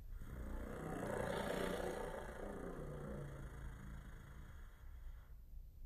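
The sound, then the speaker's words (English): A very long alligator, out on the grass in the full sun, yawns: a deep, rough, roar-like rumble, loud and sustained for about five seconds with no talking, before cutting off abruptly. “The alligator opened its mouth and yawned.”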